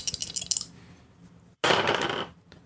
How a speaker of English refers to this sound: Let me get some dice out. So dice. Just rolling in them. Is that a dice bag or an ice machine at a Hotel 8?